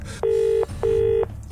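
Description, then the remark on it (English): Two clear electronic keypad beeps, each about a half-second long, sound loud in quick succession over a low background rumble, like a number being tapped into a mobile phone with 3% battery. “Phone. Phone. 3% battery.”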